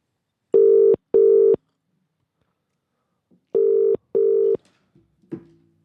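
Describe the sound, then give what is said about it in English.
A phone call to a man ringing out unanswered, with two double-burst ring tones separated by a pause, clear and fairly loud, followed by a faint click as the line drops. No one speaks. “Yeah, let's give him a quick just call.”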